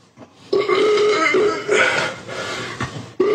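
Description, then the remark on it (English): A loud fart rumbles and buzzes for nearly three seconds with a wavering pitch, then a second short burst starts right at the end. No one speaks. “Start sending me some gassy ass beans so I can make these farts even bigger.”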